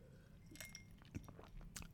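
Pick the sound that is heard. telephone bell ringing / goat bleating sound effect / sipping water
sipping water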